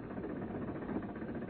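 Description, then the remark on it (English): A bus engine runs steadily, a continuous low, throbbing rumble with a faint rhythmic vibration, holding an even loudness throughout with no voices over it. “I can't stop the bus. I've got to catch it.”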